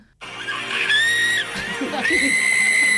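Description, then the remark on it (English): A loud, sustained, high-pitched excited scream at a singer, lasting nearly three seconds with a brief dip midway, over the muffled roar of a crowd and music. “This is me screaming at her.”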